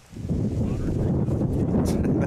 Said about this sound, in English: It was so windy on the set here